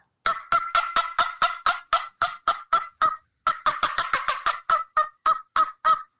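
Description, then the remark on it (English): A homemade wooden turkey box call, made as a hobby, clucks out a quick string of sharp, raspy cuts, about twenty in two fast runs split by a short pause, fairly loud with no talking. “So my dad actually makes box calls.”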